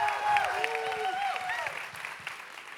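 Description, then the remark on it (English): Steady applause from a church audience welcoming a speaker, a dense wash of clapping at moderate level, with some cheering voices rising and falling in pitch over it early on. “Let's give it up”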